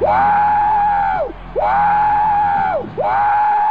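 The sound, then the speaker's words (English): A voice imitates a train whistle with three loud, sustained hoots, each sliding up at the start and dropping off at the end, with short breaks between them. “You sound like a big choo-choo train.”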